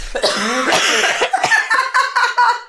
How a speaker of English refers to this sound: That's going on the blooper reel. Hold on. Synchronized coughing. Right. I must update my status. Synchronized. We would have taken home the gold for America.